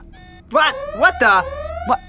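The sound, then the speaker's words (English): An alarm goes off in a few wailing bursts, each a rich, buzzy tone that swoops up and down in pitch before cutting out, followed by one shorter final blip. “My alarms are going off,”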